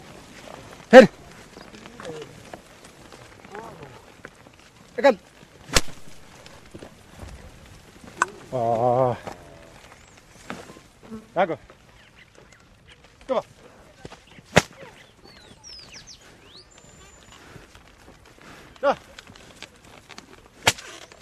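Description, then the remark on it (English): Sharp, loud whip cracks snap out at irregular intervals, around nine in all, while small oxen are ploughing; the whip never touches the animals and is cracked only to alarm them. Faint plodding footsteps, with a brief wavering shout from a man partway through. “The whip you hear never actually touches the animals.”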